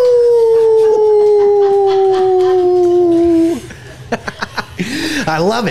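A long, loud wolf howl glides slowly downward in pitch for several seconds, then gives way to a few sharp rhythmic clicks and a warbling, wavering electronic sound: the station jingle of 99.5 The Wolf, a radio station heard around Fort Worth, Texas.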